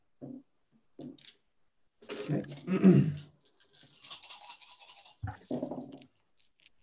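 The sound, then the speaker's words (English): A handful of seven dice rattles and clatters in a couple of busy bursts, then skitters briefly across a hard surface, with short murmurs of voice before and after, rolled for a normal shot with a Vulcan pistol in a game. “Take a shot. Just a normal shot. That's plus 1, so that's 7 dice.”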